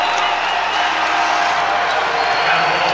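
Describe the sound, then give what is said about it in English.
A large arena crowd at a basketball game roars and applauds in a loud, continuous wash of cheering that holds steady for a few seconds, dense with no clear gaps. “This crowd getting juiced and the Raiders getting juiced.”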